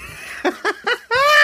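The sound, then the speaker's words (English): A voice mimics the whistling scream of lice boiled in a pot like small lobsters: three quick, breathy giggle-like bursts, then a long, high, nasal squeal that rises slightly and holds, fairly loud. “The whistling screams of the lice.”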